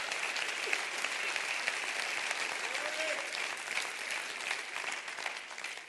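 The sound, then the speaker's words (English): A crowd applauds steadily, dense overlapping hand claps forming a continuous bright wash that holds at an even level and eases off slightly toward the end. “Would you clap your hands and rejoice to that right now?”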